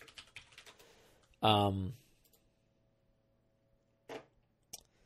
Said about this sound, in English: And then, Warforged Winter Wolves. Why am I typing that in? They don't exist. Winter Wolves do.